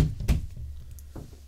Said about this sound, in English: Knock on wood.